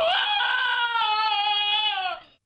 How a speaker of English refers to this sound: This is Cody the dog screaming.